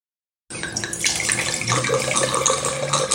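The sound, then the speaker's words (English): A drink is poured steadily into a glass, a continuous gurgling splash that starts abruptly and runs for a few seconds with no voices. “I've already poured myself two glasses, and I've got to say, they're going down very easy.”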